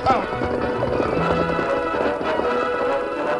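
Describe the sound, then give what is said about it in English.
Horse hooves clip-clop at a steady, quickening pace as the horse sets off carrying its rider and Anne, fairly loud over a busy background of sustained tones. “Let me help you onto my horse.”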